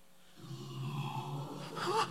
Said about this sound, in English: What was that? It sounds like a boar.